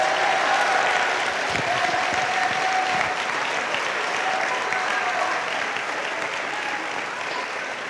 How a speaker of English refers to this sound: If you agree with that, take the next 10 seconds and give the Lord a loudest praise and a hand clap.